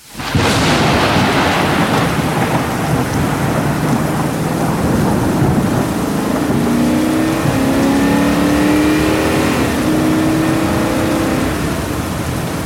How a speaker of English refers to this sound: Three suspects flee in a car. The storm is a-raging. The roads are a-flooding.